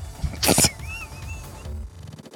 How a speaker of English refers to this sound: You can hear the stairwell creaking at this point too. Well, time to go up those stairs.